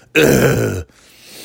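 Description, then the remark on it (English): A single loud, gravelly throat-clearing grunt, lasting under a second, like a rough, lazy cough from lack of sleep rather than sickness, followed by quiet background noise. “That cough was just, that's a lazy fat man's cough.”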